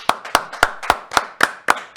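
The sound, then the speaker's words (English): A short burst of applause: about eight crisp, evenly spaced claps in a steady rhythm, fairly loud, with no voices alongside. “Do we have a round of applause kind of thing that we can hit?”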